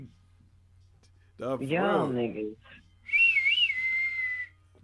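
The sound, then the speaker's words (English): A brief burst of voice gives way to a person whistling a short, wavering tune, clear, lasting about a second and a half before fading to quiet. “Like Prince said, this motherfucker was whistling the whole time.”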